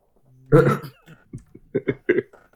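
A voice acts out a coughing fit up close: one loud, rough hack followed by a quick string of smaller, sputtering coughs trailing off.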